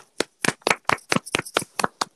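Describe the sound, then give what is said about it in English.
About nine sharp hand claps in a quick, fairly steady rhythm, each a crisp, bright smack at moderate loudness, with no talking over them. “Clap for that as well.”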